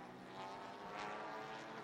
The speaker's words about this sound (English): Well, we can hear the little 2 litre engines. This is a global formula, of course, TCR.